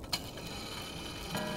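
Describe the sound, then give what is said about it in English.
Two soft clock ticks, a little over a second apart, heard faintly against a quiet, hissy background with no voices. “Old Fezziwig laid down his pen and looked up at the clock, which pointed to the hour of 7.”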